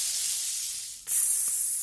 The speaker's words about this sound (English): Sizzle, sizzle, sizzle.